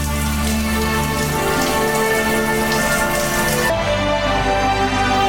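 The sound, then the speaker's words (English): Shower water runs in a loud, steady, hissing spray that never lets up, turning noticeably duller and more muffled partway through, with no voices. “Are you using me for my shower?”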